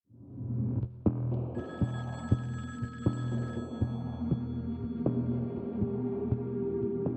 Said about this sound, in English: The phone at the Laspisa home in Laguna Niguel rang at around 1 a.m. on August 29th